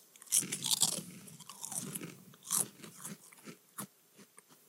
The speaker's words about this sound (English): Oh, man, I can't wait to try this. Yeah, you got to get the crunch in the microphone.